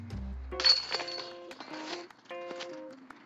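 A disc golf disc smacks into the basket chains with a loud metallic crash, followed by several seconds of bright, jangling rattles and ringing tones as the chains settle.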